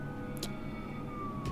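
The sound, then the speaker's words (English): A police siren wails steadily at a moderate distance in a city street, its single tone drifting slowly downward over a low rumble of background noise, with no one speaking. “as the camera zooms out on the four of you staring at each other, police sirens blaring”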